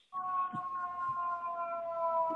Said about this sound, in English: I've got a fire truck going by. Apologize about that.